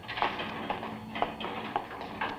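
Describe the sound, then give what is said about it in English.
A printing press runs in a print shop with a steady, muffled clack-clack beat, about two strokes a second, sounding faint. “Sounds like a press, doesn't it?”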